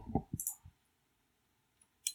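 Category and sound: household object, chair squeaking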